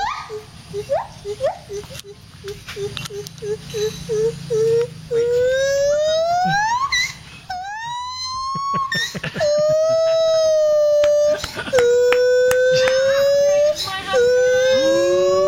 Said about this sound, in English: This is Gibbon in heat, I guess you could say.